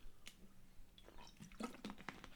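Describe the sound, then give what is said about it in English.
Quiet wet sipping noises of a person slurping a drink: a few short squishy slurps and liquid clicks in quick succession, with no talking. “excuse me, need a slurp here, still recovering.”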